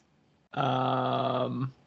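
A horn sound effect: one loud, steady blast lasting just over a second, a rich buzzy tone held at a constant low pitch and then cut off. No one speaks.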